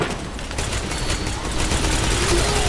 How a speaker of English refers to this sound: Gunshot.